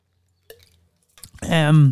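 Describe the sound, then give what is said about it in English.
A faint click, then a few quick, wet slurps of someone sipping a Body Armor sports drink, followed by a loud, drawn-out satisfied 'ahh' with falling pitch. “So, I'm going to take a sip of my beverage.”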